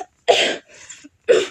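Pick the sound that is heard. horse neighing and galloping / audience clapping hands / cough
cough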